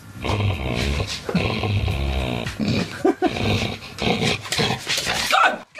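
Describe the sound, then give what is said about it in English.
A female dog growls playfully while playing tug with a ball, a loud, rumbling snarl that rises and falls in pitch over several seconds, with a brief catch midway before the growling carries on. “This was her doing that beautiful noise only a dog can”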